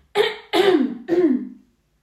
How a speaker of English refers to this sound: I'm just going to clear my throat again.